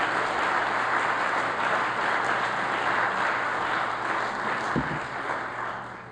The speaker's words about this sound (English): Hallelujah. Yeah, come on, let's all clap our hands to the Lord.